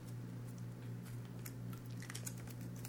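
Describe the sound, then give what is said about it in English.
Soft, irregular keyboard clicks tap away over a steady low electrical hum, with a few brief bursts of quicker keystrokes, all fairly quiet. “What are you typing?”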